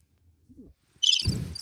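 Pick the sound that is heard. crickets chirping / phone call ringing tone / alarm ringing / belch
crickets chirping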